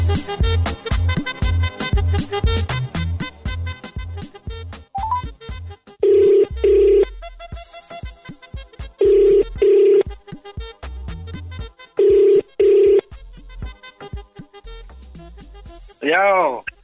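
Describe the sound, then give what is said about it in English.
An outgoing phone call to Cape Town rings out with three loud double-pulse ringback tones spaced a few seconds apart, after some quick dialing sounds, all over steady background music. “I'm gonna dial Cape Town right now and see who is on the other side of the phone.”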